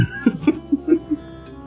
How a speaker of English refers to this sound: … will clear his throat.